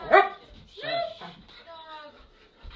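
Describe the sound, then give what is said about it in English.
A dog, pushing away a hand that is trying to pet it, lets out one sharp bark, then a wavering yowl and a thin, drawn-out whimper, all within a few seconds at moderate volume. “I'm trying to pet you, sir. Dog.”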